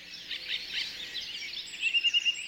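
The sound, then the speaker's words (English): A dense dawn chorus of many birds singing at once, high warbles and trills overlapping continuously, with a run of quick, evenly repeated chirps standing out near the end. “Ah, the dawn chorus.”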